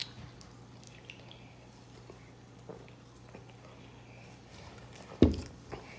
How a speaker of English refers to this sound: Let me take a sip.